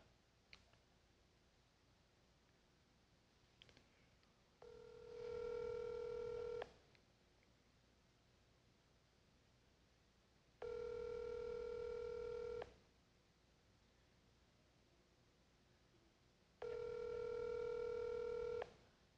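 telephone number being dialed

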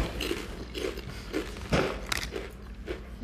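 crunching on potato chips

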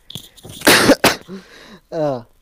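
coughing into the microphone

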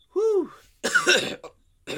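coughing fit

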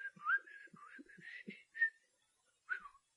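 human whistling

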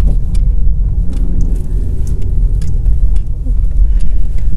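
car driving

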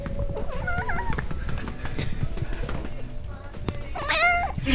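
cat meowing

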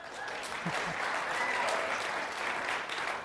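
audience applause

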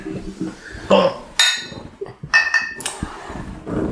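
beer glasses clinking

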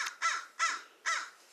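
crow cawing

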